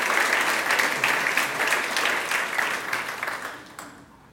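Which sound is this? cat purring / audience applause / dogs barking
audience applause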